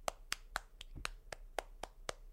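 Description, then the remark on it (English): Brief applause for the Berklee Awards at Berklee College of Music, made of about nine sharp, evenly spaced hand claps in a steady rhythm, moderately loud, with no voices and a faint low hum underneath. “So let's give a round of applause for them.”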